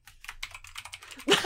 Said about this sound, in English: Frantic typing.